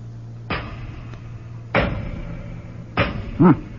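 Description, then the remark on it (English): Three heavy, booming thuds of a hammer striking a solid door to test how thick it is, spaced roughly a second apart, each ringing out with a low resonant decay, followed by a short low groan. “Let's see how thick they are. Throw me a hammer, would you?”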